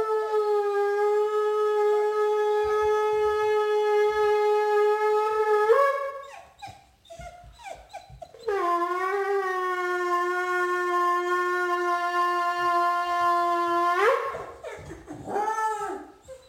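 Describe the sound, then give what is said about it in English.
A puppy howls along with a loud, steady siren wail that sounds twice, with the dog's yelps and short howls filling the pauses between and after the long tones. “So let's check out a video of my puppy.”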